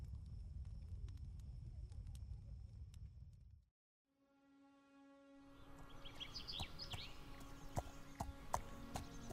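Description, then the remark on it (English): Hooves of a stone carriage horse carrying two riders clip-clop in a loose, uneven rhythm over a low rumble, break off briefly into silence, then resume more faintly amid chirping birds and a ringing, tonal outdoor ambience. “Northeast of Belar, past Bury, where our voyagers made port, Bree and Myrtle journey on one of the stone carriage horses to the land where it all started, to the Windland Kingdom.”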